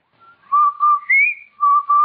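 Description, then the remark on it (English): The Rinso White advertising whistle, a short whistled jingle, clear: two low notes, a higher rising note, then two low notes again, with no voices. “Did I hear what? That whistle. That's the Rinso White whistle.”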